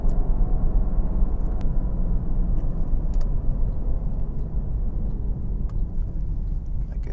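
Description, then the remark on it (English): Steady low road rumble from inside a moving 911 sports car driving into town in Friday traffic on a sunny day with melting snow, with a few light, scattered rattles and clicks of loose items popping up faintly over the engine and tire noise. No one speaks. “I got stuff rattling around.”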